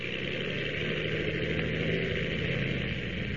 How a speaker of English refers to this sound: As our last episode ended, the Ottawa plane was just taking off when...